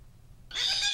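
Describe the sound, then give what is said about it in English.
A parrot chattering at the camera lets out a sudden loud, shrill squawk halfway through, a single raspy burst with bright high tones, following a moment of low background rumble and no speech. “A parrot chatters at the camera.”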